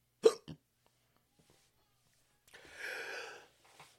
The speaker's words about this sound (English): Hold on. Bit of hiccups.